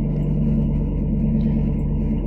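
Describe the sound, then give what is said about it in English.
A loud, steady engine rumble from a nearby vehicle, deep and continuous with a low droning hum, holding at full volume without fading throughout the short stretch. “Somebody's a truck car? Or a motorcycle.”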